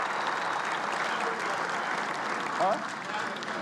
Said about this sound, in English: Hey, Albert Pujols is here, too. I wanted you to get a big round of applause.